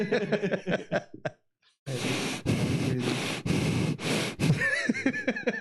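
Heavy, rushing breaths blast directly into a microphone in several long, loud bursts after a brief pause, with voices talking just before and as the breathing trails off.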